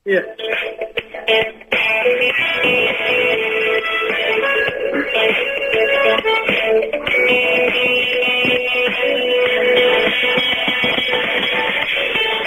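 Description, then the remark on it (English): A new mobile phone's ringtone plays a catchy theme melody from an American TV program, thought to be Due South, thin and tinny as if held up to a phone line. It runs continuously for about ten seconds after a brief spoken word. “I got a new phone, yeah, and yes. There's a ringtone on it. Yes. I think it's from an American program.”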